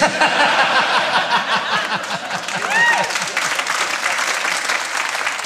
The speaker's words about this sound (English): You'll notice that only half of them were clapping.